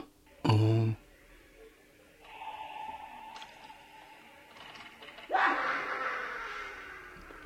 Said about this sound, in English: Let's try one more. Alexa, ask Halloween Sounds for Kids to play random. Insane Asylum.